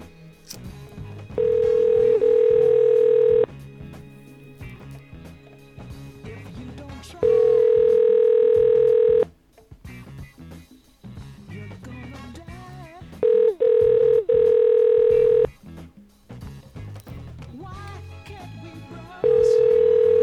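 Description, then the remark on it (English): Ringback tone of an outgoing phone call: a steady electronic ring sounds loud and clear for about two seconds, then pauses, repeating four times at regular intervals over faint background noise. “She'll be answering the damn phone.”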